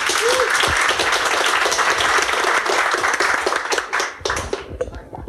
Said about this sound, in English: And a round of applause.